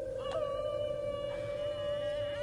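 A long, steady wolf howl holds one mid-pitched tone throughout, with a faint rise near the start and a low rumble of background noise underneath. No one speaks.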